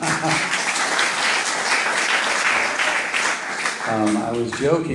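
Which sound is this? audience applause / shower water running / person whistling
audience applause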